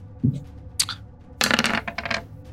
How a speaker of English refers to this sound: Nope. Oh, there goes all the luck. You just sucked it right out of this combat. Three on the dice.